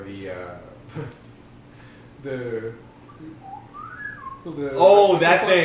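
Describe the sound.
A person whistles a rising, sliding pitch in imitation of a slide whistle, a single short upward glide between bursts of voices talking and laughing.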